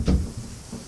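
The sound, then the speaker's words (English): A door swings closed and latches with a short, solid click, followed by a faint settling thud. “Then you hear a sharp click as the door latches behind you.”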